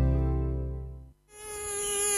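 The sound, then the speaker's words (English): A mosquito's loud, whining buzz. It drones steadily, cuts out briefly, then returns at a higher pitch. No voices. “A mosquito plague is currently raging across the 1FM listening area.”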